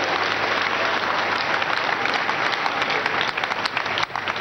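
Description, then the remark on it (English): A church audience at a live Sunday service at the Synagogue Church of All Nations breaks into a steady, loud round of applause for Jesus Christ, dense clapping that holds for several seconds and thins slightly near the end. No voices stand out over the clapping. “Put a round of applause for Jesus Christ.”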